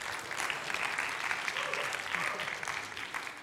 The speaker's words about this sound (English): Give them a round of applause. Woo! Keep clapping them in. Come on, come on.